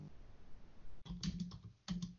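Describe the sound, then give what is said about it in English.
A burst of quick keyboard typing, several clacking keystrokes in a rapid cluster, a brief pause, then a couple more keys pressed, moderately loud against a faint background hum, as someone types in a search for Half-Life 3 t-shirts online. “Hold on, just typing it in here, see if I can find it.”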